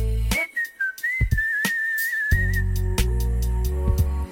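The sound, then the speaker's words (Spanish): A bright, bird-like whistled melody wavers and trills for a couple of seconds over a steady musical backing with bass and percussion, then gives way to the beat. “Pajaritos me están hablando. Si me quedo sin ritmo me ayudan silbando.”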